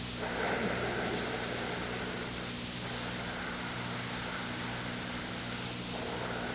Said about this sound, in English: It's a little like yogic breathing, pranayama, that is ujjayi, it's a form of breath, where you're controlling the breath a bit and you're making the sound. I'm doing that intentionally. And so the sound is helping you.